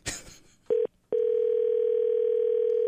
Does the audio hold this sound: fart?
no